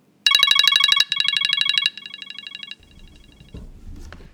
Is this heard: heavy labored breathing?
no